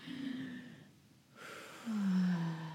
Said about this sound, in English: I realized jet lag I was shallow breathing. And I took a massive breath in.